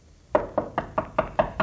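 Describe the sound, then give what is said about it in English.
Seven firm knocks on the wooden door of a cottage in the isolated village of Holman, in a steady, evenly spaced rhythm, fairly loud, with no voices. “Well, if it's old Doc Sims' body, it hasn't forgot its manners. Manners? Yes, open the door and let the corpse walk in.”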